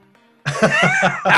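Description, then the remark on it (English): After a brief quiet stretch, a loud sneeze bursts out and breaks into several rapid, rough, spluttering pulses, with no talking. “Bless you, brother.”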